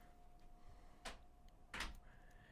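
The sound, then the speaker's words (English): A door is pushed shut, giving two short knocking thuds about a second apart, the second slightly louder, over a faint steady hum. “Will you close the door, please?”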